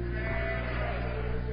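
A young sheep bleats in one long, wavering cry that fills the moment, loud, with no talking over it.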